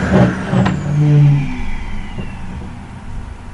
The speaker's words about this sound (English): Oh, I think the vacuum started back up. Yeah, I'll shut the door.